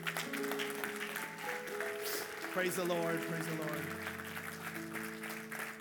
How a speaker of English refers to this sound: Come on, let's give the Lord a big hand clap for his word.